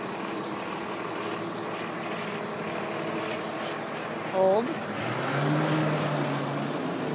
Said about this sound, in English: Pause for truck.